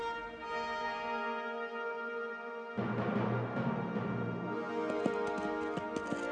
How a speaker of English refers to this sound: At the eastern edge of the settlement, a dry wash had been bridged, and the sound of a horse's hooves on the short wooden span could be heard throughout the town. Suddenly, that bridge thundered with the hoofbeats of a hard-ridden horse.